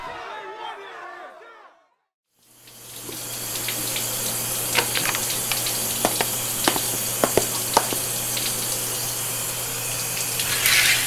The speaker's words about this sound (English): Oh, hand me a towel. It's a cold shower.